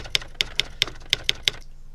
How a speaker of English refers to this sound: We really need to update this soundboard. Yeah, that typewriter.